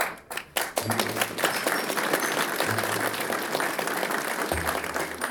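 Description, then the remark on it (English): An audience breaks into steady applause for Abagnale receiving an ethics award, many hands clapping in a dense, crackling wash that stays loud and continuous for several seconds, with no one speaking over it. “The audience clapped for Abagnale.”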